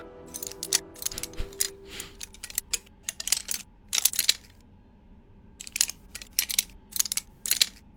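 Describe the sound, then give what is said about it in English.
A female bird clicks its beak over and over, opening it slightly, quick sharp clicks in irregular bursts with a short pause midway, fairly quiet, with no talking. “you see her beak opening a slight bit, and she keeps repeating that clicking noise.”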